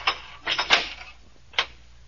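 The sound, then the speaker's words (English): A few hard, clacking footsteps come down a corridor, landing unevenly on a firm floor, with a brief cluster and then a pause before one last footfall, moderately loud with no voices. “I hear footsteps coming down the corridor now.”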